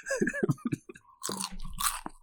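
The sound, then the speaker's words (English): Crunchy chewing of popcorn in front of the microphone, a series of loud, crisp bites and crunches with brief pauses between them, no talking. “you got to do that with your popcorn now. You got to like chew it in front.”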